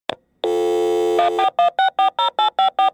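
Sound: telephone dialing tones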